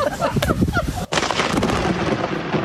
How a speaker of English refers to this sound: Then a huge storm popped up during their scale-down ceremony. And literally as the couple were saying their vows, lightning struck.